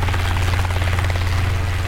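A helicopter's rotor roars loudly, a steady low thudding drone with a broad engine whine over it, continuous throughout with no voices.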